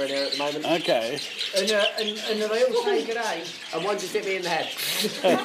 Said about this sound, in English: Mostly budgies, diamond doves, hex grass finches, which are tiny, and little zebra finches as well